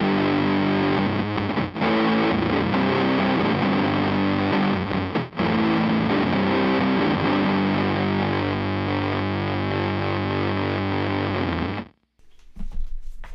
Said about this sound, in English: All right, now the next thing you'll hear is going to be the unmodded MXR Blue Box with the blend knob turned all the way up.